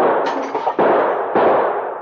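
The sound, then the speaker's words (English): Three loud gunshots from a gunman firing at Mounties ring out in quick succession, the first smashing the lantern a sergeant carries; each sharp crack trails into a long, rushing roar that carries straight into the next, with no voices. “The first shot had smashed the lantern which the sergeant was carrying, but the Mounties had dropped behind the boulders before any more of the bullets could take effect.”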